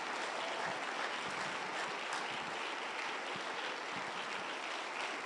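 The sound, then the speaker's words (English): A crowd of worshippers clapping unto the Lord steadily, a dense, continuous wash of applause with no voices standing out, holding an even loudness for about five seconds. “Yeah, clap unto the Lord. Clap unto the Lord.”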